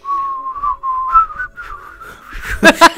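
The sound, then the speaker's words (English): A person whistles a slow, wavering melody, the pitch sliding between sustained notes, ending with a couple of breathy, noisy bursts. “You should whistle happy birthday, and I'll whistle the 12 Days of Christmas, and we can go out in a duet”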